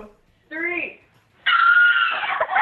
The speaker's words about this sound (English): We get on the floor, and she lays me out. And they're dying laughing because of the way I scream.